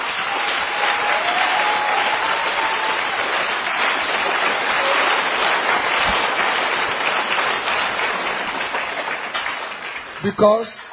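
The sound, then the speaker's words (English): A crowd applauds the speaker steadily for about ten seconds, a dense, even wash of many hands clapping at once, with a few faint voices mixed in and a brief louder burst near the end. “Because, yes, it's a good place for you to clap your hands for me.”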